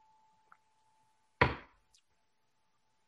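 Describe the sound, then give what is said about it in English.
A single sharp thud as a water glass is slammed down on a hard surface, with a brief rattling decay, a couple of faint clicks around it and a steady low electrical hum underneath. “As I slam my water glass.”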